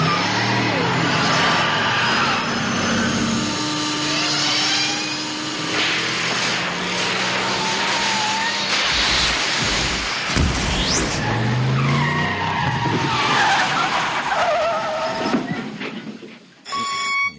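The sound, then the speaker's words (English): A car engine fires up and revs hard, its pitch climbing through repeated accelerations, with loud screeching tire skids layered on top, continuous before cutting off abruptly near the end. “Let me turn the car on.”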